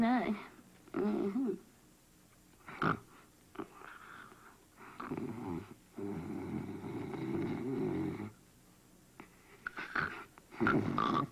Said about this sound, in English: Honey, I'm so sorry. You're just driving me crazy. You're snoring like I've never heard anybody snore.